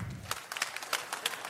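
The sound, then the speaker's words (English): A crowd at Gillette in Boston claps to vote on whether the man on the screen looks more like Larry Bird. The clapping is fairly faint, with a few sharper claps standing out at a loose, steady pace over the softer patter of hands. No one speaks. “Clap if it's Larry Bird.”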